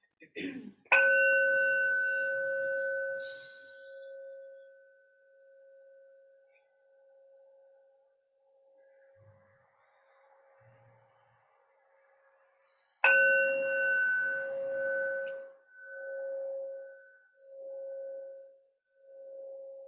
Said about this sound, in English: Hearing the bell.